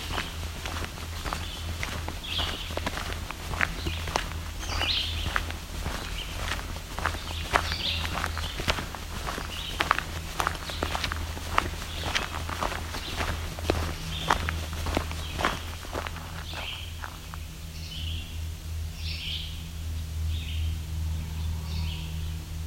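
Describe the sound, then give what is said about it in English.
Short, faint red-eyed vireo phrases repeat at intervals along a trail over a steady crunch of footsteps, with a low constant hum underneath. No one speaks. “Some red-eyed vireos.”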